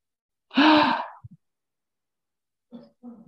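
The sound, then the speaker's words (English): A sharp, loud gasp bursts out, followed by a couple of small catches of breath and then softer, breathy sounds trailing off near the end. “I'm glad you sighed, like you made a gasp, because both of our hands are over our mouth and we're in silence.”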